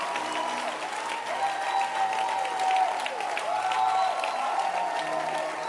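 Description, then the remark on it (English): A church crowd claps steadily, a dense wash of many hands applauding at a fairly even, full volume throughout, with faint voices and cheers mixed underneath. “Can you clap your hands for the church? Oh, a louder hand clap, a louder hand clap, a louder hand clap, a louder hand clap, a louder hand clap.”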